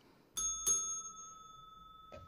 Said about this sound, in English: Ring the bell.